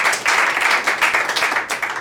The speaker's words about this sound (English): You passed. Big round of applause.